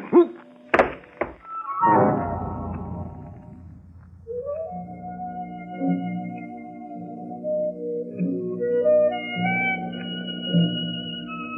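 A heavy thud of a blow to the head lands hard, with a few sharp knocks in quick succession, then fades into a low rumble and a long, wavering tonal drone.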